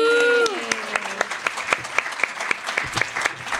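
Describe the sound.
A small audience at a poetry reading claps steadily for a few seconds to welcome a guest poet, individual hand claps distinct and evenly paced, with a brief tail of a voice fading out at the very start.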